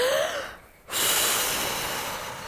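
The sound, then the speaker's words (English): A loud, exaggerated deep breath while resting and recovering between workout exercises: a noisy inhale trailing off, a brief pause, then a long forceful exhale rushing out. No one speaks. “Exaggerate the breath like this.”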